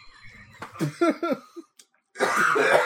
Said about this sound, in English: He's trying to drink and he's spewing it all over.